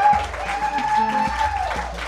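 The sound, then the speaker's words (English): An audience applauds steadily, a dense wash of many hands clapping at once that stays loud throughout, with a faint high tone running underneath, for a departing guest on a stage show. “So I think it's time to give Jeremy a round of applause and bring out our next guest.”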